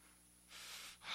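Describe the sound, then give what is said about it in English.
A person imitates hard, angry breathing out, like someone in wrath: a long, forceful huff of breath followed by a sharper, louder second blast, with no words. “He said, let all bitterness and wrath, that word means passion or breathing out, hard breathing.”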